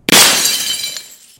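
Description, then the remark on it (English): A loud crash of window glass shattering, the fragments blasted inwards: a sharp burst followed by bright tinkling fragments that ring out and fade over about a second. “The window shatters and the fragments are blasted inwards.”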